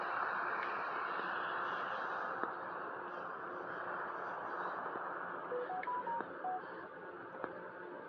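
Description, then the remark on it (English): A smartphone gives a quick run of short electronic Telegram channel notification beeps, stepping up and down in pitch, fairly soft against a steady rumbling background of road or engine noise. “Let's see what my phone is saying, it's beeping at me.”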